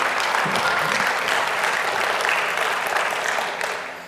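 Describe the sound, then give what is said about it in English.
An audience at a Sunday morning church worship service applauds a song steadily, a dense wash of many hands clapping at once, sustained for a few seconds and beginning to taper off at the end. “Go ahead and clap now.”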